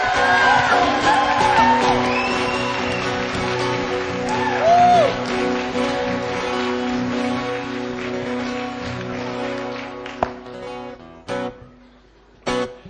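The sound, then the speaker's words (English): A church audience shouts and whoops in praise to God over sustained music, rising voices sweeping up and down, then the crowd noise fades and a few sharp bursts ring out near the end. “Hey, let's give God a praise.”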